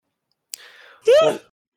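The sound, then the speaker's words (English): A single yawn: a short click, a breathy drawn-in breath, then a loud voiced groan that rises and falls in pitch before trailing off. No one speaks. “I had two coffees and I'm yawning.”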